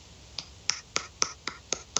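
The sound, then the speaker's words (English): Loud one-handed clapping: seven sharp, crisp claps in a quick, steady rhythm, made with a single hand, with no talking in between. “I mean, people have told me I'm a genetic freak because of my one-hand clapping ability.”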